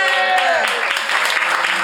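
Steady applause from an audience, a dense wash of many hands clapping at a fairly loud, even level, with a brief vocal tone mixed in at the start.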